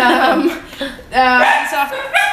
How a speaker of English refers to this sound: dogs going berserk at something out the front.